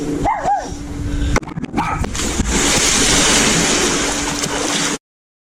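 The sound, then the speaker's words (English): A dog gives a few quick, high yipping barks near the start, followed by a rough, continuous noisy wash that fills the rest of the short recording before it cuts off abruptly. “I just got a dog. Would you like to see my dog?”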